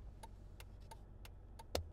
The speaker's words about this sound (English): Let me turn the blinker off. You hear the blinker?